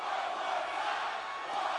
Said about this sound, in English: And I love the crowd reaction on this.